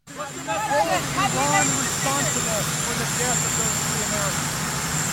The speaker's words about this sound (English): Here is that exchange on the White House South Lawn. It is a little noisy with the presidential helicopter in the background.